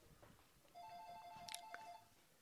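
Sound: house telephone ringing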